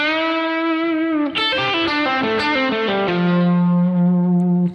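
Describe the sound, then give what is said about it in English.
A distorted electric guitar plays a quick descending pentatonic line in the manner of a guitarist, with legato notes smoothly connected by pull-offs instead of pick strokes, opening on a held note and ending on a sustained low tone. No voices. “But he actually used some pull-offs to eliminate some of the pick strokes.”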